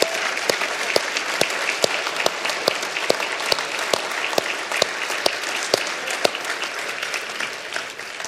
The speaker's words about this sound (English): All right, let's stand up and cheer for that, okay? Yeah. Yeah, just let it out. Cheer. Thank you, Jesus.